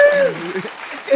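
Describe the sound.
A short burst of steady applause from a group of hands, with a bright vocal whoop at the start and voices mixed in, lasting about a second.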